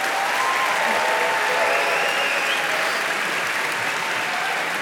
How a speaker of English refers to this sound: Thank you so much. Okay, round of applause for all of our participants.